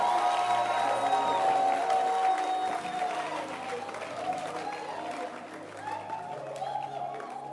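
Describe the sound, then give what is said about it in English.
A church audience claps and cheers in a dense, steady wash of sound, with a sustained tone and voices mixed in at first, the applause easing slightly after a few seconds. “Clap your hands for Dancing Stars.”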